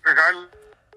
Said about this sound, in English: And his phone just dropped.